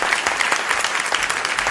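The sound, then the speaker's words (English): Steady applause from a group of people, dense overlapping claps with a fast, even rhythm and bright, crisp tone, continuing at a constant moderate loudness without any voices. “We're still clapping.”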